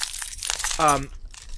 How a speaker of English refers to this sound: Dude, I swear to God, my keys... I jingle, jangle, jangle. This is now the Atomic Radio Hour ASMR channel.